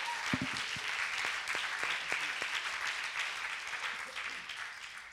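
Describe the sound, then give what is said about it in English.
An audience applauds steadily, giving a round of applause to Jesus, a dense wash of many hands clapping at an even, fairly loud level with a few sharper individual claps standing out, tapering slightly at the end. “So can we give one more round of applause to Jesus and everything that he's done in our lives?”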